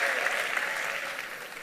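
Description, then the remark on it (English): An audience at a church service claps for the Lord, dense and sustained applause filling the whole moment at an even loudness with no voices standing out. “Put your big, big hands together for the Lord and please be seated.”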